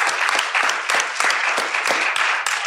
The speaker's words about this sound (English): Well, let's give a huge round of applause.